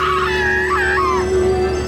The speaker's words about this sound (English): The scream. Oh my God.